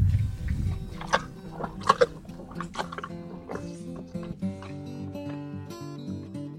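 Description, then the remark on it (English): A donkey chews and slurps its wet dinner from a bowl and licks the bowl, with a string of irregular crunches and smacks early on fading into softer munching over steady background music. “After the donkeys slurp up their dinner, they wander off into the eucalyptus trees on the other side of their huge pen.”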